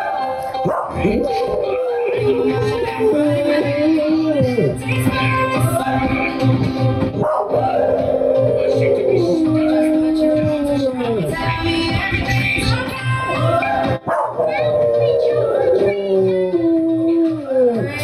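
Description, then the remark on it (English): A female West Highland Terrier howls and yips along to loud music, its wavering, sliding cries rising and falling over piano and singing throughout. “Here's Scott's lovely dog Ted. It's a Westie.”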